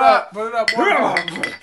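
Drinking glasses clink together in a quick communal toast during a drinking game, a bright chiming knock mixed in with several overlapping voices calling out and cheering.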